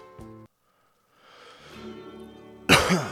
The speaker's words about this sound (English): Sorry about that cough. I need a cough button. God, it feels like I got something. I need to, like, cough up in my throat. And it's just my throat. Like, it's swollen.